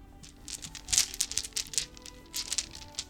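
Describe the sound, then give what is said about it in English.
Fairly quiet rustling and crinkling of a bag as someone rummages through it to get out plastic and metal dice, with a few sharp little clicks of small hard objects knocking together amid the irregular bursts. “Let me get out my dice.”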